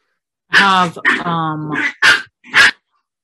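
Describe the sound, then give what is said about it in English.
A puppy barks in a quick run of high-pitched yelps and yips, about five loud bursts over three seconds, with no other sounds around them. “Did I tell you about a puppy?”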